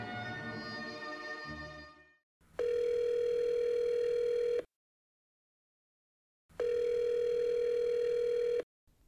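A telephone dial tone sounds twice: two loud, steady electronic hums of about two seconds each, split by a pause of silence, following a brief burst of harmonic sound at the start.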